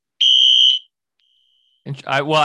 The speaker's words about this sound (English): you hear that? Oh, wow, what is that? It's a fire alarm, but I'm gonna see if it's real.